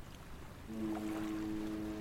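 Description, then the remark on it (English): A steady rush of ocean surf washing back on a rocky beach below a cliff with foggy water, with a low humming tone rising in partway through and holding steady over the water noise. No voices. “So while the waves fall back, let me take this moment to explain.”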